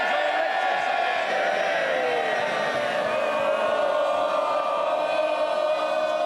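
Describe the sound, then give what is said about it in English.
A large crowd of Members of Parliament in the British House of Commons cheers and shouts together after a speech, a loud sustained roar of voices that holds steady for several seconds without letting up. “Can I just say to you, the biggest day in the House, and you want to carry on cheering?”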